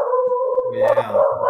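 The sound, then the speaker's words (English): A dog howls in a long, wavering tone, with a few sharp barks and yips breaking in, steady over the short stretch. “Your dog's got a hold of something out there.”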